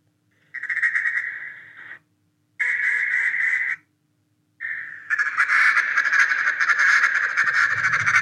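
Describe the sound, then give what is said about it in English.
A duck call blown in short nasal hen quacks: two sustained honking notes with pauses, then a longer, louder, raspier run of quacking, with no one talking. “It's like to have the confidence to go from that little nasally hen that you did right before you hear a little nasally hen.”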